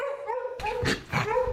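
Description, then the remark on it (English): Several dogs bark and howl at once in a noisy, echoing, cage-free animal shelter of about 10,000 square feet, where dogs run around a big main room. A steady whining tone comes first, then two sharp bursts of barking. “Well, the first impression is it's pretty noisy, and to be honest, it's a bit smelly.”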